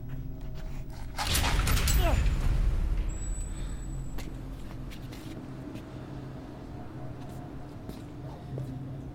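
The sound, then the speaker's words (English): A door creaks open with a brief bending groan and a burst of rumbling noise, then a low, steady ambient hum continues alone for several seconds. “The moment we opened the door, the world felt different.”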